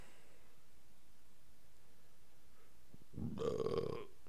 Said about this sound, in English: Excuse me, but I'm not gonna act like I'm not gonna do that regularly. I burp a lot.